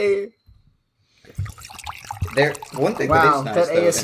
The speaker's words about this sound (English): The waterfall of the Pinot Grigio. Hell yeah. What are we drinking today here? Today we're drinking a Pinot Gris. It's a 2019, so it's aged.